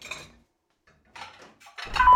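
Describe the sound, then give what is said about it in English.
Dishes and cutlery clatter in a few short bursts separated by brief pauses, ending in a louder, fuller crash of clinking and knocking. No one speaks. “Have you done those dishes yet?”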